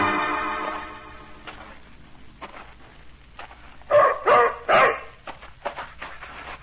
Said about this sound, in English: German shepherd dog, that's what he is. Come out of the army. Like I said, real bad. Vicious.